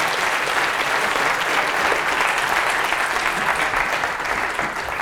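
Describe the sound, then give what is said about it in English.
Sustained audience applause for volunteers after a demonstration of the stable marriage problem algorithm, a steady, dense wash of many hands clapping at even loudness for about five seconds, with no voices rising above it. “Okay, let's give them a round of applause.”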